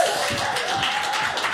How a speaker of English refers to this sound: Put your hands together, everyone,